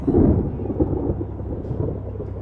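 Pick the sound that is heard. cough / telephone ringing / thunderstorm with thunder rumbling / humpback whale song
thunderstorm with thunder rumbling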